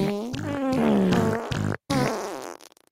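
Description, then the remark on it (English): A voice makes loud, buzzy fart noises as a fart song in a sung, wavering pitch, one long stretch broken by a brief silence before a second burst that trails off. “And that is the fart song, you guys.”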